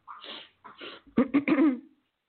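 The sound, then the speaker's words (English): Two breathy sniffles from allergies, followed by a short burst of congested, throaty coughing and throat-clearing sounds, with no talking. “You'll excuse my sniffling if you can hear it. Allergies are driving me crazy tonight.”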